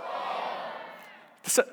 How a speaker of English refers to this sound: On the count of three, I want everybody to yell out their favorite season. One, two, three.